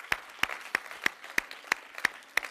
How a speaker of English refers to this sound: Somebody clap your hands again.